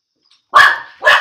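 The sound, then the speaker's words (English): Dogs bark excitedly as someone arrives home, two loud, sharp barks in quick succession, with no talking around them. “Now the dogs are really going to freak out.”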